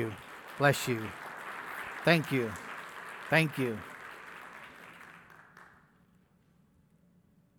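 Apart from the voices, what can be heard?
audience applause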